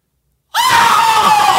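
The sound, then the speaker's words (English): A person lets out a loud, sustained high-pitched scream, imitating a horror-film shriek, starting abruptly after a brief silence and holding steady to the end. “I mean, the screams, the most iconic scream in film history. Oh, can you do it?”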